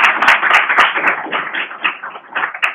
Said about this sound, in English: so we're going to clap you one more time anyway.